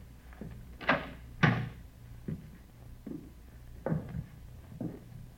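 An apartment door is tried and opened: two sharp wooden clunks of the latch and handle, followed by several softer knocks and rattles as it swings open, with no voices.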